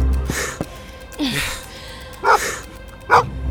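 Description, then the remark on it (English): A dog named Sandy barks in short bursts, a few sharp woofs spaced apart with a quick yelp-like sound early on, moderately loud against a quiet background. “Shh, Sandy, no barking.”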